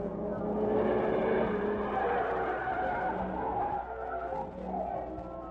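A car engine roars steadily with a squealing, skidding tire sound, holding loud and continuous for several seconds as the vehicle drives out through the gate of a meat company.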